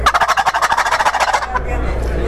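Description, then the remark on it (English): A turkey gobble call is sounded: one loud, rapid rattling burst of throaty pulses lasting about a second and a half, then it cuts off to a low background hum. “And he'll give you that thank you for coming this morning, gobble.”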